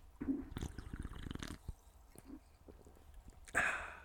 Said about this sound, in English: that's what I'm sipping on these days. I got a cherry bubbly right here. I think I'm going to actually take a sip if you don't mind.